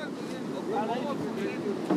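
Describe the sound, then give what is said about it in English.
Cold Atlantic surf rolls onto the Namibian shore where a man is fishing with a rod, under steady wind, a continuous broad roar throughout, with faint voice-like sounds drifting in the background. “The bobber lands far past the surge in the cold Atlantic water.”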